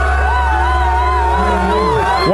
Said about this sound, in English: Why are they shouting her down? I'm just kind of curious. Oh, and it goes on for a couple minutes.